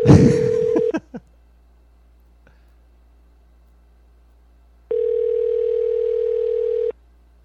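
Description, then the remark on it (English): A phone line's ringing tone on a call: two long, steady buzzing rings separated by a few seconds of silence, heard clearly through the line, with a brief rustle over the start of the first. “It's ringing.”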